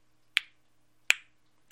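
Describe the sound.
Three sharp, bright clicks, slightly unevenly spaced, imitate the ticking of a Corvette clock on the wall. Each tick is crisp and sudden against near silence, with no talking.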